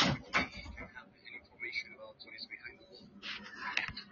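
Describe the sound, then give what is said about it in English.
Nurses close a door with a short, solid knock near the start, followed by faint, muffled voices in the background and another brief clatter toward the end. “The nurses just closed my door.”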